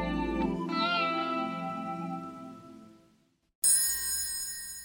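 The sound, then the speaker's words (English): A song fades into a brief silence as it ends, then a small bell, like finger castanets, strikes once, bright, its shimmering high ring sustaining to the end. “And it ends with this little bell, like the finger castanets.”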